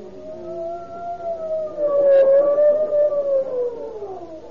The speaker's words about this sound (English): Oh, here comes the ambulance.